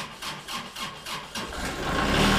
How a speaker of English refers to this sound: He hops onto the seat of his orange Kubota tractor to turn it on.